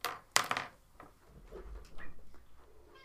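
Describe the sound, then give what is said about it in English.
A door is opened to let a cat out: a sharp wooden clunk and rattle of the latch, then softer shuffling and handling noises as it swings. No one speaks. “My cat is crying outside the door.”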